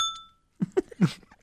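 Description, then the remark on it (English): A real hand bell rings once, its bright metallic tone fading quickly over a fraction of a second, followed by a short pause and then a few bursts of voice. “That's not even a sound effect. That's a real bell.”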